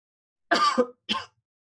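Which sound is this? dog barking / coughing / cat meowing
coughing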